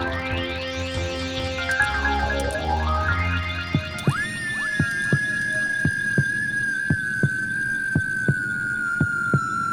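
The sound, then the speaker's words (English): Swooping electronic tones and a low rumble give way to a pounding heartbeat effect: steady, evenly spaced thumps, roughly ten in a row, beneath a sustained high whine. No one speaks. “And that pounding, beating.”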